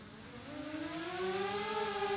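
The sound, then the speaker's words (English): A small drone takes off from a person's hand: its rotors whir up to speed, their buzzing pitch climbing steadily and then leveling into a sustained, tonal hover hum that grows slightly louder as it hovers in place. No one speaks. “And I'm going to take off and just hover in place.”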